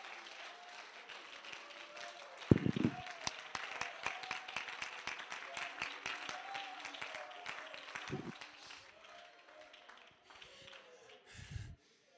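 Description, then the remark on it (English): An audience claps their hands to praise the name of Jesus, steadily and unevenly for about ten seconds. Sharp overlapping hand claps form a dense patter, with a few heavier low thumps mixed in and a murmur of voices underneath. “Well, let's clap our hands and praise the name of Jesus.”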